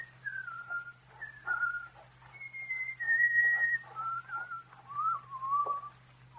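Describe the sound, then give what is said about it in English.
A man whistles a wandering, tuneful melody, a series of sliding, sustained notes that rise and fall in phrases, with a faint low hum underneath. “have that good-for-nothing loafer put in jail where he can whistle to his heart's content.”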